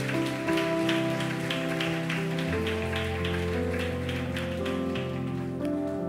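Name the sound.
audience applause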